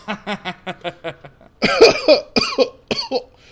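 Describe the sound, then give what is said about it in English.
A run of short, rhythmic voiced throat sounds gives way to four harsh, forceful coughs in quick succession, loud. “I'm gonna do this because I need to cough.”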